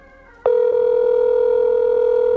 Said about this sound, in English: I will call him at his office. Oh, the phone's ringing.